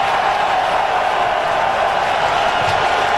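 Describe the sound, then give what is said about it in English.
A stadium crowd cheers Tom Brady as he is announced with the visiting Tampa Bay Buccaneers, in a dense, unbroken roar that holds at a steady, loud level for about three seconds, with no single voice standing out. “They cheered, well, we got the clip of them cheering him.”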